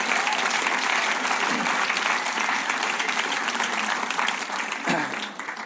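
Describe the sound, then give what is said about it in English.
A crowd breaks into sustained applause, a dense, steady wash of many hands clapping that holds loud and even for several seconds before thinning slightly toward the end. “Now, this young man here, you're going to have to wait a moment while everybody else goes and takes the seats and we'll give them one last clap.”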